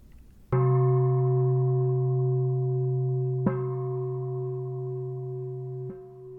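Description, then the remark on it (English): A meditation bell marking the end of a meditation is struck three times, first at full strength and then twice more, softer. Each strike leaves a long, steady, ringing tone with layered overtones that barely fades between strikes. “And then when the bell rings, you can open your eyes if they're not already open.”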